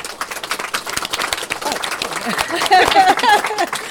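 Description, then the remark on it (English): An audience at a book event at Unity Books in Wellington, on a cold, winterish day, breaks into steady, dense applause lasting several seconds, many hands clapping at once, with a few voices calling out in the crowd near the end. “Who were you clapping for”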